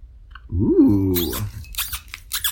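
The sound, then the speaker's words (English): A squeaky cork is twisted out of a wine bottle, a drawn-out rising-and-falling creak lasting about a second, followed by a few short scraping rustles. “It's a squeaky cork.”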